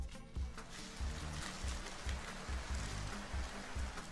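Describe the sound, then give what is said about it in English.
A homemade rain stick decorated with tape and pipe cleaners tipped over, releasing a steady, hissing cascade of tiny pattering grains like rainfall, with soft low thumps recurring in a regular rhythm underneath. No one speaks. “I think it sounds like rain too.”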